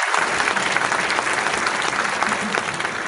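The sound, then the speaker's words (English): Steady, dense applause from an audience, many hands clapping at once in a continuous loud patter with no pauses, holding an even level throughout. “Just nonstop. Just clap, clap, clap. They were applauding each other?”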